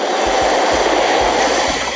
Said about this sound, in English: As the helicopter carrying his body came into land at the compound, it was too much for his people to bear.